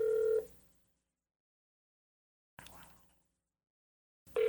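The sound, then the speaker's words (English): A few touch-tone dialing beeps, each a short steady tone cut off abruptly, separated by long pauses and a brief clatter of handling noise in between. No one speaks. “Please, call the number. Give me the number then.”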